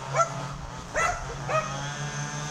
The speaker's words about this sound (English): This is perfect. Can you put those fucking dogs on? So many sounds.